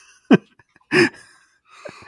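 A big yawn from one person: a quick sharp intake, then a loud, breathy voiced burst with a low groan, trailing off into softer breathing. No words are spoken.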